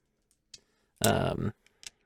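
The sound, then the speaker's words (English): Two six-sided dice clatter in a brief half-second rattle, framed by a few sharp, isolated clicks before and after, fairly quiet. “Each of you are going to roll 2d6...”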